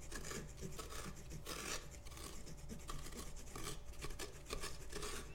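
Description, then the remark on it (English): Someone scrapes out the inside of a pumpkin by hand, ungloved, hollowing it out: continuous rough, rasping strokes in a steady but uneven rhythm, moderately loud, with no talking. “We are scraping him to life.”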